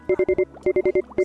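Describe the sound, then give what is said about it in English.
Rapid electronic beeps from a broadcast signal rebooting, in short bursts: four quick evenly spaced tones, a brief pause, four more, then another pair, all at a steady mid pitch with a harmonic buzz. “What is that beeping sound? Oh snap, that is the broadcast signal rebooting.”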